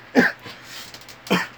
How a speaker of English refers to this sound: My dudes, stop coughing.